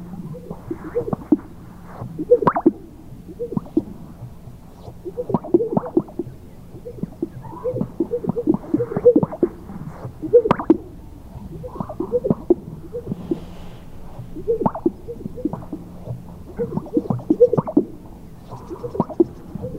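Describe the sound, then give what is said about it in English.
Sage grouse displaying with their chest sacs: repeated low, liquid pops and gurgling whoops recur in overlapping rhythmic bursts throughout, several birds at once, over a steady faint hum. “Finally, chest sacs, sage grouse.”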